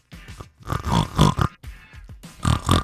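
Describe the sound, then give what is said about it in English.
A person's voice imitates a pig, letting out a run of loud oinks and snorting grunts in quick bursts with brief gaps between them, for National Pig Day. “How about National Pig Day?”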